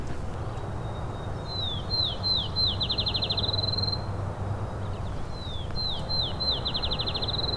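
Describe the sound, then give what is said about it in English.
A field sparrow at McMaster Forest sings twice: each song is a run of clear, sweet whistled notes that speed up into a quick trill, like a bouncing ball. It rings out over a steady low outdoor rumble. “Here is a field sparrow.”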